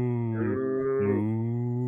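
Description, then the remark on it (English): A person imitates a cow with one long, steady, low-pitched moo, the tone wavering slightly in the middle before holding to the end. “Can we just record a whole episode of me mooing?”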